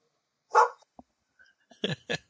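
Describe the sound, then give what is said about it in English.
Dogs bark in short, sharp bursts as somebody comes into the house: one loud bark, a pause, then two more quick barks close together, clear, with no talking over them. “No, somebody came in the house and the dogs went crazy.”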